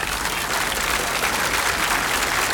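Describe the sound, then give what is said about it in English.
A crowd applauding steadily, a dense wash of many hands clapping at an even, sustained loudness throughout with no pauses and no voices standing out. “Should be applauding yourselves, frankly.”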